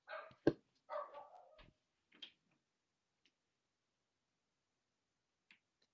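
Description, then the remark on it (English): A dog lets out a couple of sharp barks in the first two seconds, followed by a short yip, then near silence with only a few faint clicks. “This dog is barking.”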